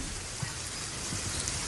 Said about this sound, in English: Sir, it's raining. What are you doing out of your house? Are you aware that it's raining?